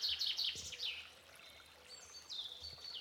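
Birdsong of blackbirds and pigeons in woods, with bright warbling phrases and chirps layered over the steady trickle of a flowing river, fairly quiet throughout.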